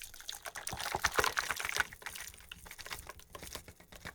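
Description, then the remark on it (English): A Midnight Stinger cocktail of Fernet Branca, lemon juice and simple syrup is strained from a shaker into a cocktail glass: a splashy, gurgling pour with small clinks, strongest over the first two seconds, then thinning to a softer trickle. No one speaks. “And strain it into a cocktail glass.”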